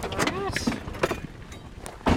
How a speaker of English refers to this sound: Marsh parks his truck not far from one of his field sites